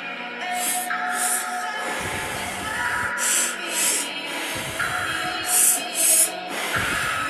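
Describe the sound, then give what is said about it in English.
Rhythmic conscious breathing focused on the lower belly, in three paired bursts, each a quick airy inhale and exhale, repeating at a steady pace over a soft sustained tonal drone, with no talking. “By working with your lower belly and its energy through conscious breathing, you are encouraging your ego to relax.”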